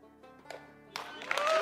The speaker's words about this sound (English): The crowd gave Andy Savage a standing ovation.